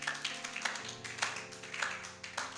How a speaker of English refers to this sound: It's a good thing for you to clap. If you can clap, clap well.